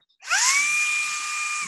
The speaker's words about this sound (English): I picked this thing up. You can suck a fucking baseball through a garden hose with this thing. It's called the Shark. It's like a wand, a little wand vacuum. I'm gonna play it.